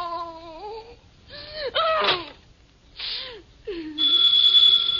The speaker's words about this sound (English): The phone kept ringing. And ringing.